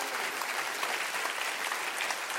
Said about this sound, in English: Would you clap your hands because he came?